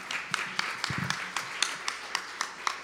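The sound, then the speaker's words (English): An audience gives a man another round of applause in steady, evenly spaced claps, fairly quiet and sparse, as if only a few hands are clapping, continuing for a few seconds with a faint murmur underneath. “Give him another round of applause.”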